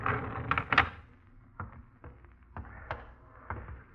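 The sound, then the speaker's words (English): An elevator door opening in a basement: a couple of loud metallic clanks and rattles up front, followed by a series of lighter knocks and clicks spaced out as it slides. “Get the door.”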